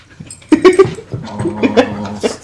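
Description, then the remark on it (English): A dog belonging to someone's brother whimpers and lets out short, high yips, several excited whines rising and falling in quick succession with no one talking. “These are his brother's dogs.”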